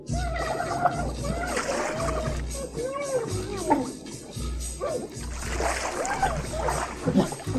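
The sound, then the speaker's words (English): A short, busy homemade novelty jingle for a new segment, with splashing, sloshing water sounds over a pulsing low beat, squawky, gobbling noises mixed in, ending on a wet, sputtering fart. “It's an appropriately wet fart at the end.”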